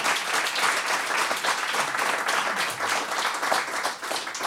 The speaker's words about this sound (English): That's a round of applause for me.